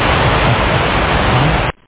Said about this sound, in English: Sounds like it's raining a little bit.